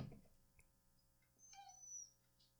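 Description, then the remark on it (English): Faint, muffled dogs whimpering outside a closed door, trying to get into a room: a thin, wavering high whine rises and trails off, followed by a softer brief whimper, with no talking. “I can't deal these dogs. They're just trying to get in my fucking room.”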